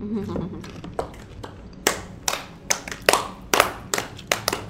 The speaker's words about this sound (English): Wait for someone to say it. We're still clapping.